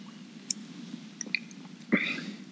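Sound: sipping IPA beer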